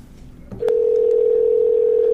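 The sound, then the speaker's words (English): A steady electronic phone tone switches on after a faint click and holds unbroken at a clear, moderate level: the ringback of an outgoing call being placed to a comedian. “Phone is ringing.”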